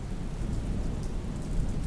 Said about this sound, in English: As the afternoon advanced, it became increasingly difficult to see, and we heard the rumble of a thunderstorm gathering over Tempest Mountain.